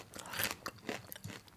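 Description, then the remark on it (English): Crunchy chewing of a puffed water lily pops snack right on the microphone, a rapid series of crisp crackly bites, with no talking. “I am chewing on mic.”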